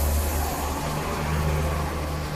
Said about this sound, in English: That was a bus.